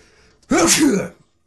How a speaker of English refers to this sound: Excuse me, I had to get that sneeze out of there. It was just beckoning to come on out.